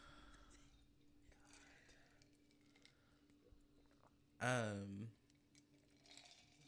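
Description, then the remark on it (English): Soft sipping of tea, with small wet clicks and mouth noises, followed by a short, loud voiced sound like a satisfied sigh after a swallow. “Sorry for the ASMR, guys. We are sipping our drinks as we're doing this.”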